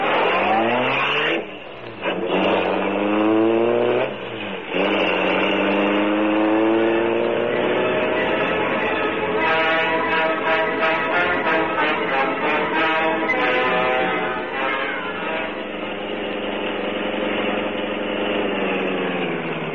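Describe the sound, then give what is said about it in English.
A car engine revs up loudly, its pitch climbing through a couple of gear changes, then settles into a steady, lower hum for the rest of the time with no voices. “You take the car around to the rear.”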